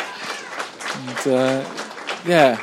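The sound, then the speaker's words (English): A football crowd applauds steadily as an injured player is carried off the field, the referee also applauding; a dense wash of clapping that swells toward the end, with a voice rising in pitch over the noise. “A round of applause. And rightly so for her efforts on the field.”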